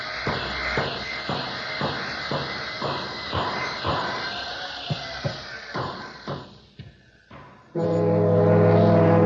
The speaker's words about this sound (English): There's a whistle. I guess it's lunch.